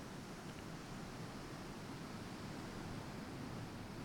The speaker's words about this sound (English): You know, this is where you need to be, down here at the ocean.